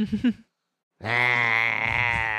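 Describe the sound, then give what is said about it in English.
A person imitates a big yawn in character, voicing a character named Checkers: a short vocal sound, a brief pause, then a loud, long, steady drawn-out groan with a nasal, almost bleating quality. “Checkers is going to do a big yawn at this point.”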